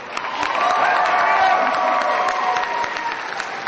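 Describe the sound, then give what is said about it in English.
An audience claps for a group after their skit presentation, steadily for several seconds, a dense patter of many hands that stays fairly loud throughout, with a few cheers and voices mixed into the applause. “Take that. Everybody clap.”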